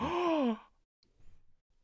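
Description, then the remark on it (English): A single sharp, voiced gasp, loud, lasting about half a second with a swooping pitch, followed by near silence and a faint low rustle. “Gasps.”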